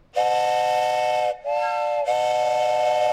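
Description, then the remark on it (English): A train whistle, one of several train whistles in a collection of old items, is blown in three loud blasts: a long one, a short one, then another long one. Each is a steady, breathy multi-tone note, and nobody speaks. “Yeah, these are train whistles.”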